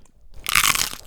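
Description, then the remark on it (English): A loud crunch of someone biting into crunchy food, one sharp crackling burst that trails off after about half a second, with no talking. “This official substantial crunch is for Nora.”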